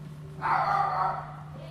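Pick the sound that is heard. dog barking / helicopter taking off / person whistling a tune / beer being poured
dog barking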